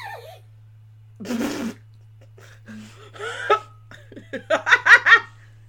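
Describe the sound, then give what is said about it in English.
A single sharp, breathy hiccup bursts out, followed after a pause by a few softer vocal sounds and then a string of rhythmic, giggling laughs. “I think your hiccups are telling us that time is past.”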